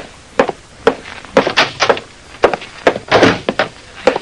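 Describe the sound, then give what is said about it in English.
A heavy oak door opens and closes, with a quick series of solid thunks, clunks and rattles of the latch and frame, no voices. “The buzzer sounded, and Titus Wolfe, secretary to Vincent DeWitt, nodded toward the heavy oak door.”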